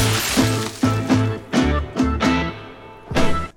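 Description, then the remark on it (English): Several heavy, irregular crashing blows land on a car one after another, each impact sharp and loud with a metallic ring lingering between hits. No voices are heard. “do you think that Donnie was in the car when he was smashing yeah. that up?”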